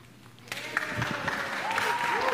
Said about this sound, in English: Yeah, it's great to applaud, right?